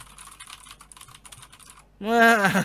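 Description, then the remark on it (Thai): Rapid, crisp clicking of typing on a mechanical keyboard fills the first two seconds, an irregular flurry of keystrokes, before a person's voice cuts in loudly at the end. “ผมคิดว่าในวงเล็บอาจจะต้องเป็นพวกพิมพ์สัมผัสหน่อยฮะเพราะว่าถ้าพิมพ์ไม่สัมผัสเร็วมากมันคีย์บอร์ดไอ้พวกเขาเรียกว่าเมคานิคอลคีย์บอร์ดพวกนี้ไม่หนุกมันก็จะไม่ได้รู้สึกอะไรแบบนั้นมากครับ”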